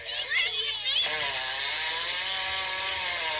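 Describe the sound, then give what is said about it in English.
A hippo at a zoo, just come up out of the water, loudly passes gas while spraying dung everywhere with its tail: a harsh, buzzing, sputtering blast that runs steadily through the whole clip, with a brief human exclamation near the start. “Listen to all that gas coming out too.”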